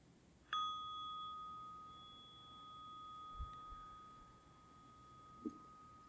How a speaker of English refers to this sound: And then opening your eyes to the sound of the bell.